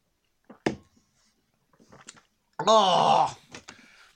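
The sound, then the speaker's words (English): A person drinking a pint of beans: a few short, wet gulping and swallowing clicks with pauses between them, followed by a loud, strained, wavering groan of disgust, then a couple of faint clicks. “No, because I'm drinking a pint of beans.”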